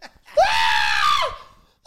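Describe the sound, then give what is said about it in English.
A person lets out a loud, sustained scream imitating an overexcited fan in the front row at a concert, one long high-pitched wail lasting about a second, rising sharply at the start and dropping off at the end. “That's how he started screaming, to the point where he's screaming like that so loud, people just backed away from him.”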